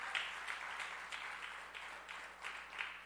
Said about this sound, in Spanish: Si lo crees, fe, dame un aplauso al Señor.